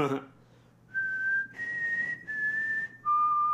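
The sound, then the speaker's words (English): Someone whistles a short four-note tune as a quiz bonus answer, clear: steady held notes that rise, step slightly down, then fall to a lower final tone, over a faint low background hum. “How many notes is the Mockingjay whistle. And for bonus, perform it.”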